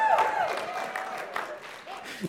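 A crowd cheers and claps for a couple of seconds, a steady wash of applause with shouts and a high whistle-like tone at the start, voices mixed throughout.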